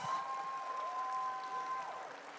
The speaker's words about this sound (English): Could you guys give these students a round of applause?